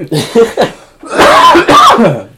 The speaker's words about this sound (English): I got a cough, so headphone users beware. I'm going to hack up a lung real quick. The cigarettes are getting me.